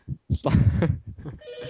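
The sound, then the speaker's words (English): A telephone ring comes in near the end as a steady electronic tone, right after a short burst of vocal sound; it's brief and moderately loud. “Ooh, the phone.”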